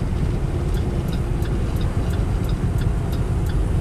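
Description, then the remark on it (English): Steady, loud low rumble of a car cruising on a highway at about 65, the speed limit, heard from inside, with a faint regular ticking running through it and no one talking. “He's going 65. That's the speed limit. I can go that fast.”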